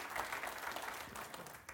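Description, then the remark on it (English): A church audience claps steadily for a pastor, many hands making a dense, even patter of applause that holds a fairly constant level throughout, with no voices rising above it. “Let's give her a hand clap, because she took us to the spot where he could step in.”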